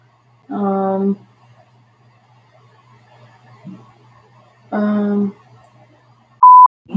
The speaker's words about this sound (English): So you say something funny and then it beeps. I can say something funny on command.